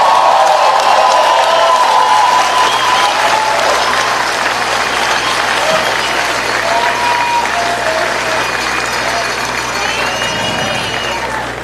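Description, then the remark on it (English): Sustained crowd applause at an outdoor rally fills the whole stretch, a dense, loud wash of many hands clapping with scattered cheers for over 1,000 people brought by bus, staying strong before easing slightly near the end. “Give them a hand, give them a round of applause.”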